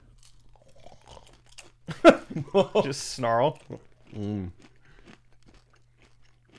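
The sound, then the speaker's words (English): Crunching on peanut butter chocolate snack mix: a quick cluster of crisp, loud chews, then two drawn-out hummed 'mmm' sounds of enjoyment. A voice speaks briefly before the chewing. “Peanut butter chocolate mix. I mean, what a generous portion here.”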